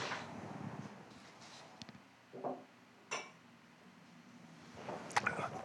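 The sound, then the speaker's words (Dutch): Quiet drinking noises: a soft sip and swallow of water, then small clicks and taps like a glass being handled and set down, with no talking. “Nee, neem een slokje water, joh.”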